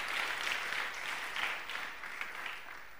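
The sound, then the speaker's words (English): A church audience applauding the singers and actors: dense, steady clapping from many hands that holds fairly even in volume for the whole stretch, with no voices rising above it. “A bigger hand clap for the singers.”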